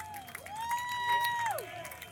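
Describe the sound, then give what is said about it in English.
An audience at a fundraising event applauds and cheers for the team Foxeria del Sol from Atlanta and Charleston, scattered claps beneath a loud, sustained whoop that rises, holds steady, then drops away, continuous for a couple of seconds. “They may be from Atlanta and Charleston, but we better give them a big round of applause.”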